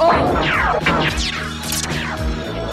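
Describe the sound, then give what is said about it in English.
In a chamber, Rax uses a stiletto to break a huge chunk of stone off a pedestal: it cracks and breaks away in a loud crash, followed by several heavy thuds and scraping debris over a few seconds, with no voices. “in the chamber, Rax has had enough and he uses stiletto to break like this huge chunk of the stone off the pedestal.”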